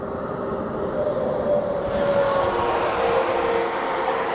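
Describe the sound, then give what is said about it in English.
Truck horns from protesting truckers in Ottawa blare in long, overlapping mid-pitched tones over a continuous low rumbling roar, the honking held steady for several seconds with no talking. “Oh, is that the honk?”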